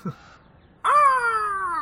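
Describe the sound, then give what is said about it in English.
A single loud, drawn-out caw rings out after a brief near-silent pause, its nasal tone sliding slightly downward as it holds for about a second. “Bird sounds!”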